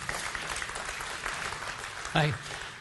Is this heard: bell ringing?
no